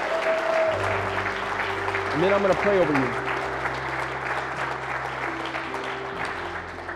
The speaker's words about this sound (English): Can we give them all a round of applause?